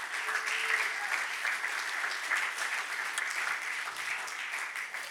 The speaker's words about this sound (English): But I wanted to start by pausing and saying thank you to Jesus for where he's gotten us. So, yeah, just clap. Do whatever you need to do.